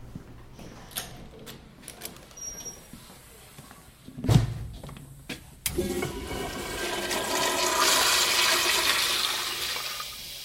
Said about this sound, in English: So while we're over here in this part of the building, let me show you a really cool little secret in the bathroom. Go in there and flush the toilet that says out of order and see what happens. I'm completely serious. This is not a junior high prank.